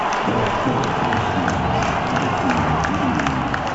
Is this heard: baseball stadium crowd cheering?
yes